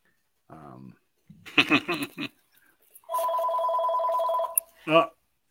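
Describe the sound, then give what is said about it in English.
A telephone rings once in a steady, buzzing electronic tone lasting about a second and a half, clear, between short bursts of voice before and after it. “Is that a Berkshire phone call there”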